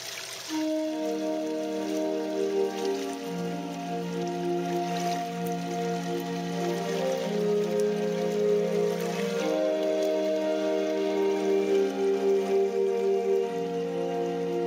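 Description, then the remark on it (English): Soft, sustained tones from a hydrophone, a stainless steel pipe that pumps water through holes so it spurts out like a fountain, played by covering the holes to stop the water flow. The tones shift slowly between pitches, layered like an organ, with a faint watery hiss beneath; steady, no voices. “A hydrophone is a stainless steel pipe that pumps water through different holes that then spurts out like a fountain.”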